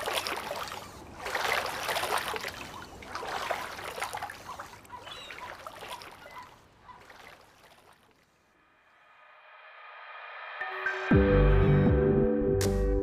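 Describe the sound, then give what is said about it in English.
Water sloshing and lapping against a small boat on the ocean in irregular surges, with creaky splashes, giving way after several seconds to a rising musical tone and loud low chords. “this has been Outside Time, coming to you from, well, the ocean.”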